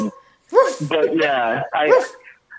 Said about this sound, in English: Because when you said that, my dog just barked a little. Cute.